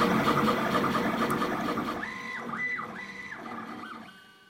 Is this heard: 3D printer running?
yes